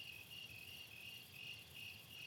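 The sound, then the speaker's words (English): Steady, dense chorus of crickets chirping in continuous pulsing trills outside at night after dark, sustained throughout with no gaps. No voices are present. “And then, friends, we would just linger for a few moments to the crickets. And by now it's really dark outside.”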